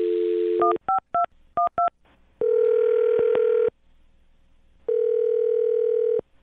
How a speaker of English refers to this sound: Well, we'll find out right now. I'm going to dial his phone number, okay?